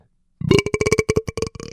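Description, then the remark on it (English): A loud, drawn-out burp bursts in after a brief silence, rumbling with a rapid, croaky pulsing for over a second before trailing off, with no talking. “I'm a fan of a well-placed burp or fart. That was that had like volume to it too.”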